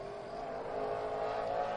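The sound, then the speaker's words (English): A stock car, car number 04 with an Alien chassis, driven by Kyle Cottom from Victoria, roars steadily at high revs on its opening lap, its pitch climbing slightly as it speeds along the track, loud and continuous with no talking. “The opening lap time for Kyle Cottom into three and off of four.”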